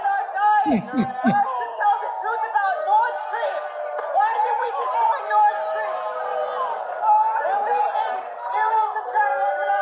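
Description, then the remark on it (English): A large crowd at an event in Manhattan boos and jeers at hecklers, many overlapping voices forming a loud, continuous roar with scattered shouts rising above it for the full stretch. “And the people booing the hecklers are just more brainwashed than they can imagine.”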